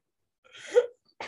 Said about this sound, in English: Sneezed so hard, I rattled my brain loose. And I went blind.